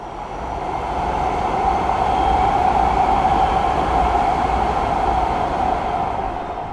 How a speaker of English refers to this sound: That's the new Expo Line light rail train that just went by. I'm standing in a housing and retail complex in Culver City called The Platform.